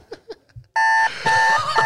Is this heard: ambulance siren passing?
no